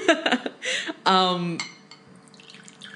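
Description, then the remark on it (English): Water being poured into a glass, apparently imitated by a voice standing in for someone pouring more water: a few short gurgling bursts, then a steady, buzzy tone lasting about half a second, trailing off into a soft, fading trickle. “he doesn't want to make more noise, so that's what this noise is going to be when he pours his water.”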